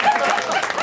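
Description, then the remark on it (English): Light, scattered applause from an audience as the panel guests Kasher, Natasha Leggero, Rob Huebel and Jimmy Pardo come out. It is a steady patter of clapping that lasts under a second, with no clear voices on top. “Here they come! Light on the applause, but what?”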